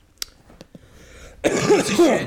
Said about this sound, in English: Excuse me. I'm coughing because I'm upset with you, Jimbo Fisher.